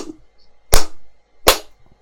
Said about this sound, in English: That was a great slap. No, that was. I actually have to say that was one of your best slaps yet.